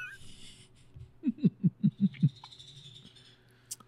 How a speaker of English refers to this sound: Even the bird's laughing at you. You know what, bird? Fuck you, bird. Fuck you. Guess who's not getting anything in their feeder?